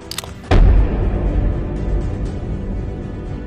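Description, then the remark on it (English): A single loud explosion bursts in suddenly after a brief quiet moment, followed by a deep, rumbling roar that lingers and slowly fades over the next few seconds. “Warning, do not shake the bottle hard because it could explode.”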